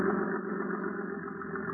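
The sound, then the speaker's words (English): The engine of a heavily loaded boat heading out to sea drones steadily, a dense low rumble with an even, unbroken hum that holds the same level throughout, with no voices over it. “She's loaded down pretty heavy. Kurt and Martha. They're heading out to sea.”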